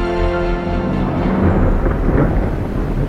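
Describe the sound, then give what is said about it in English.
A loud British summer thunderstorm over a garden: deep, rolling thunder rumbles continuously beneath a steady, broad hiss of falling rain, with no voices. “Traditional British summer weather made a dramatic appearance.”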